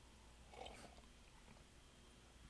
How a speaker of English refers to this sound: I have to take a sip.